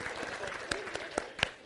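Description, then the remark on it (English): A soft, polite golf clap from a few people, a scattered run of light claps that grow slightly sharper toward the end over a faint background murmur. “Golf clap.”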